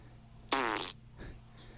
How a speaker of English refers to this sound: He sent us a couple of farts.